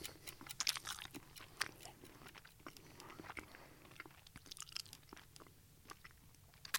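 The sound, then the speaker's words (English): Crunchy chewing with irregular, crisp snaps and clicks from someone biting into food in front of a microphone while recording, repeated through the whole stretch over a soft low background, with no speech. “Don't eat or drink in front of a microphone, because it really messes up the sound that you're recording.”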